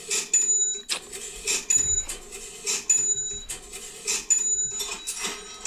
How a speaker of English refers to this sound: The cash register.